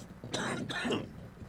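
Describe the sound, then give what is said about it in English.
Two quick, rough coughs in close succession, moderately loud, followed by a short quiet stretch with no talking. “It's so annoying because anytime someone starts to cough”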